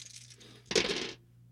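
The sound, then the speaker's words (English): Dice are rolled for 3d6 poison damage in a game, clattering briefly across a hard surface in a sharp rattling burst of about half a second that stops abruptly, with a faint steady hum underneath and no talking. “Yeah, roll your damage.”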